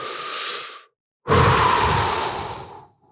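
A slow, deliberate deep breath: a softer inhale lasting under a second, a brief pause, then a longer, fuller exhale that fades out, with no talking.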